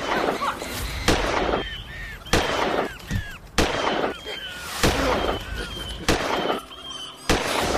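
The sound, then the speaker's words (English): Six sharp, booming gunshots in a film scene ring out at a steady pace, about one every second, with high chirping bird calls fluttering in the gaps between the blasts as birds are shot. “Do you notice that bullets are evenly cleaving birds in half?”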